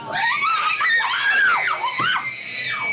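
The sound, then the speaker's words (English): Loud, shrill screaming fills the whole moment, several high-pitched wails rising and falling and overlapping one another, with no speech in between, from actors in a 17-room interactive haunted house attraction in Tustin. “The actors touch you.”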